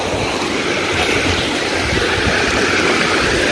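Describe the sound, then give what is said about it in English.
Steady surf of ocean waves washing up onto a sandy shore where the water meets the sand, a loud continuous hiss and rumble with no distinct breaks and no voices. “Right here, where the water meets the sand. That's the best place to ground.”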